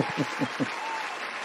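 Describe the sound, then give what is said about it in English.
A brief burst of applause welcoming a comedian guest on a show: a steady, hissy patter of clapping, with a few heavier, evenly spaced claps standing out at the start before it settles into an even wash. “Give you the applause because, you know, multifaceted.”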